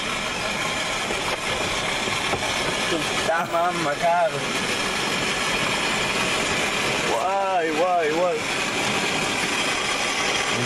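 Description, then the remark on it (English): A car idles steadily inside an automatic car wash with its windows down, its low engine hum buried under loud, continuous rushing and spraying noise, while voices briefly speak up twice. “Car wash, get the windows down.”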